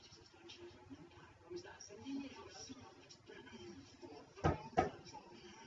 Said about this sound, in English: Is that your knock at your door again? No, that's me.